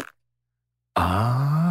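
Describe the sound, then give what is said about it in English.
A voice imitates a fart to illustrate the noise made as air goes through the butt cheeks, producing a loud, sustained buzzing raspberry that starts abruptly after a moment of silence and holds a low, slightly rising pitch for nearly a second. “And the butt cheeks are what kind of makes the fart noise because the air goes through and it goes.”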